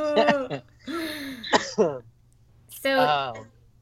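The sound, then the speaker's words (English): A person gives a dry cough and clears their throat several times in quick, raspy bursts with short pauses between, accompanied by a faint low hum. “Excuse me. Dry cough.”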